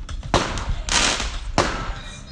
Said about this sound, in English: Don't mind the fireworks in the background.